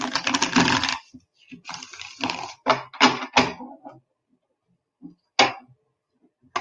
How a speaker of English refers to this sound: So Gail, I'm going to go ahead and shuffle the cards.